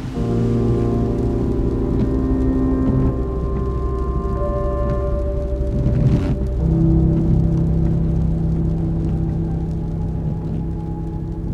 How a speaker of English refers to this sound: The rain's picked up again, and I'm on a long, straight road driving home.